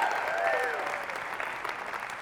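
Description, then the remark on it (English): An audience at a Sunday-morning keto talk in Austin, Texas bursts into steady, dense applause, the clapping sustained and fairly loud throughout, with a brief whoop or cheer rising over it near the start. “Clap it up if you're a 3%er.”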